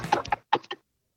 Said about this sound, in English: Hello. It's me, Knock. It's trick or treat. Wait, is that a knock knock joke or something? Oh, no, he's knocking on your door.